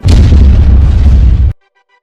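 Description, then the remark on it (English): A plane crash explosion after a vulture collided with the plane: a loud, deep roaring blast that rumbles heavily for about a second and a half, then cuts off abruptly into near silence. No one speaks. “Unfortunately, after that, the vulture collided with the plane, which led to a plane crash.”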